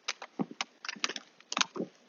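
Ice crunching underfoot: irregular clusters of sharp, brittle crackles and snaps, crisp and fairly bright, coming in quick bursts over about two seconds with no voices.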